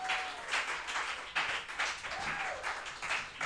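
A crowd claps steadily as a performer is welcomed to the stage at a comedy show, a dense and even patter of many hands that never lets up, with a thin, faint whistle rising and falling briefly within the applause.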